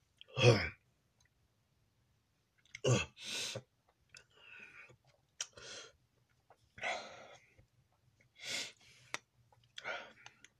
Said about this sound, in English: Mind you, that I had to fucking cough before I took that last hit. And that's why I coughed harder.